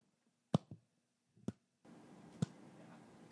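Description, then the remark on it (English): A slow clap: three sharp, separate hand claps about a second apart, each crisp and moderately loud, with a soft hiss rising in the background toward the end. “Holgum is going to do a slow clap.”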